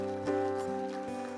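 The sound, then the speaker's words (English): An audience claps in praise to God, a steady patter of many hands layered over sustained organ-like chords, with a few sharper accents standing out from the clapping. “Come on, give God a great big hand clap of praise and tell Him thank you.”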